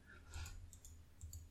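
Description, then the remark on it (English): Quiet typing on a clicky keyboard: a few scattered, crisp key clicks in small bursts over a steady low hum, with no voices. “Sorry about this clicky-ass keyboard here.”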